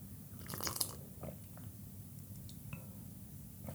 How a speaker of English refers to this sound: Anyways, so I'm gonna sip my tea and let you meditate a bit.